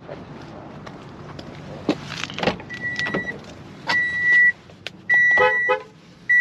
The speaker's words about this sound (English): I can actually walk over to my car and honk the horn if you want.